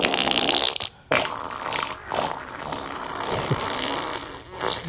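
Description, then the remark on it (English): A long, wet, bubbly fart sputters for several seconds, frothy and gurgling as if let out into shallow water, with a brief pause early on before the foamy rasp continues. “Whoever did right, that sat it in an inch of water or something. Like that. It sounds yo. So foamy.”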